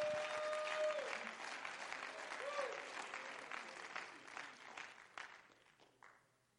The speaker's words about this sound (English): Come on, let's clap our hands and give him some praise.